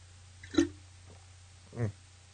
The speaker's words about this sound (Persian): سکسکه